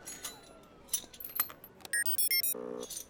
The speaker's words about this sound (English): With your permission, Your Highness, I will attempt to pick the lock. Tinker? You may try, Engineer Tormar, but an alarm will sound on a third attempt.